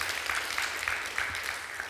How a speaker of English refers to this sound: Yes, come on, you can give him a great round of applause.